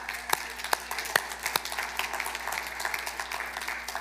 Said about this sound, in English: let's just applaud parents.